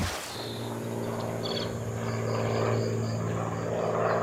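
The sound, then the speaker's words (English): Ice on Timber Lake cracking and expanding in springtime, almost summer, makes a steady, resonant low drone with layered humming tones. Brief higher chirps ring out partway through, and no one speaks. “And when the ice cracks and expands, it creates that kind of sound.”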